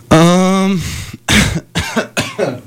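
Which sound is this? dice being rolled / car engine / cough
cough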